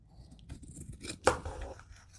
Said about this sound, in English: I'm going to go ahead and trim the extra off. So I'm going to follow my white paper, whatever I can see of it.